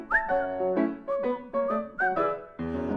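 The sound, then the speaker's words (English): A whistled melody carries a bouncy tune in short phrases, with gliding notes riding over steady musical accompaniment, clear, no talking. “If you're feeling in the dumps, don't be silly chumps, just purse your lips and whistle, that's the thing.”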